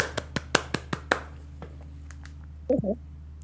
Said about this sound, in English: Well, thank you very much. Let me clap for myself.